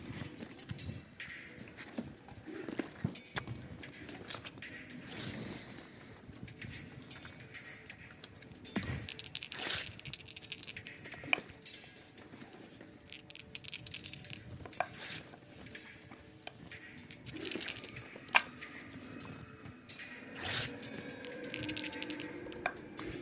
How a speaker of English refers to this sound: Oh my god, that's so many dice to be rolling.